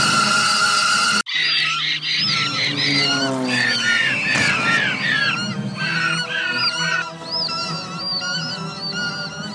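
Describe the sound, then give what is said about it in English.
A dense, loud chorus of fake CGI cartoon birds in a film squawking and honking over one another, with shrill rising and falling calls filling the whole stretch after a brief break near the start. “Yeah, and it's just birds, not even real ones.”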